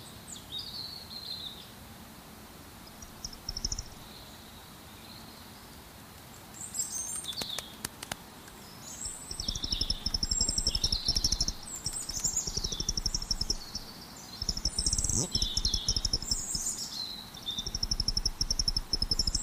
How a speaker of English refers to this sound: bats are also known to hang around until dawn, where their calls overlap with the sounds of the awakening birds, as can be heard here.